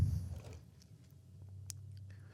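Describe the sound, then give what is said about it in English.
Someone takes a sip of wine from a freshly opened bottle and swallows: a low, wet gulp at the start, then faint mouth clicks and a soft, quiet stretch. “Ooh, gulp, gulp, gulp.”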